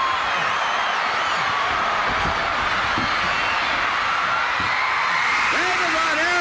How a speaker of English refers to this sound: A little bit of crowd noise there. Yeah, you could hear him come out.